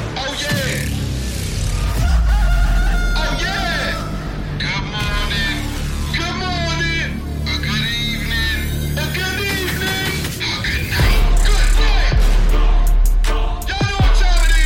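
A loud, driving wrestler's entrance theme song with a heavy bass beat and a sung, chant-like male vocal performed by the actor playing the wrestler, playing continuously for the whole stretch.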